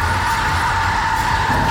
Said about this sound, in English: As soon as Trinity spots the hard line, an enormous city trash truck skids into position facing the booth.